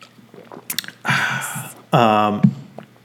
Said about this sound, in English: Well, pouring one out for John Schnepp. So, that's right. Cheers, sir.